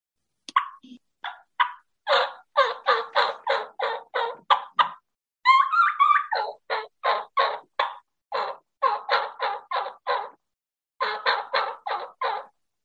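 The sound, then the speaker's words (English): A turkey call used for spring hunting runs through a kee-kee run: quick, high whistled notes followed by steady bursts of raspy yelps in several rhythmic groups, fairly loud with no talking. “I like to put some kikian in there in the spring because it's also a good locator call because they're not hearing a lot of it.”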